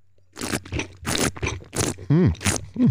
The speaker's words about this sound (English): So on the palate, yeah. …, let's take a sip.